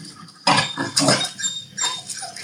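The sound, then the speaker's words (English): A Jack Russell named Lumpia growls and barks in a few harsh, rough bursts, fairly loud, with a low grumble carrying between the outbursts and no one talking. “Lumpia, which is the one shouting that she's not going to take it anymore.”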